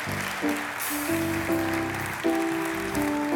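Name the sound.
audience clapping hands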